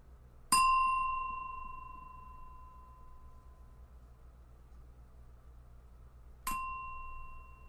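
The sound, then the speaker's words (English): A meditation bell is struck twice, several seconds apart, at the start of a kindness meditation practice, each strike ringing out in a clear, sustained tone that slowly fades over a low background hum. No one speaks. “And I'm going to ring the bell three times at the beginning and three times at the end.”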